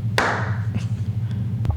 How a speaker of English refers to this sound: Alright, I'm hoping that clap was, you know, like, sufficient enough to find again, but I guess it'll be easy to find.